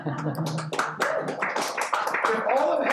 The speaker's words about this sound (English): We had four precious, precious souls enter into the kingdom this morning. That was a good time to clap right there, guys.